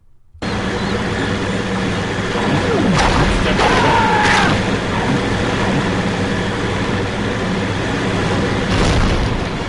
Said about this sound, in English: Is that a, so that was a shark eating a boat. That was, yeah. that was I thought that was the pump machine. It was a shark eating somebody and then exploding.